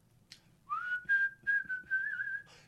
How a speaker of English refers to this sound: I don't know why I'm whistling …